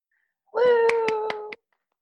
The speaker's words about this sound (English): Woo! I like to clap, everyone, because we don't get enough applause these days.